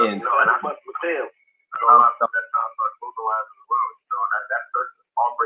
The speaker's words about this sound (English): Hey, we got a phone call.